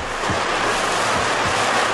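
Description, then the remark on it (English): Fire hoses coupled to fire pumpers are opened up at full blast, spraying water in a loud, unbroken roaring hiss that fills the whole moment, with a few brief low swooshes rising beneath the spray. No one speaks. “Chief, pumpers are ready, all the hoses coupled up. We'll flood that thing with water from all angles.”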